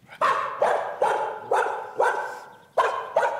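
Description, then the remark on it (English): A dog barks at a stranger, repeatedly and sharply, about seven loud, unfriendly barks in a quick, steady rhythm with a short pause before the last two, with no talking. “the first bark was a dog barking at a stranger”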